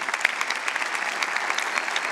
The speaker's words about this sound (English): How about if we give a round of applause to the Father who is present?